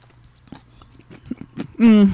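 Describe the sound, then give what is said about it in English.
Someone chews a pickle with a series of crisp, wet crunches in an uneven rhythm, then lets out a loud, drawn-out voiced hum at the end. “The pickle is the last for me.”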